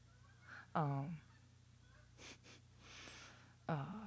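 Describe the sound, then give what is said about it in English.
Geese honk twice, two loud nasal calls about three seconds apart, with softer breathy rustling in between over a steady low background hum. “It could be a whole bunch of geese.”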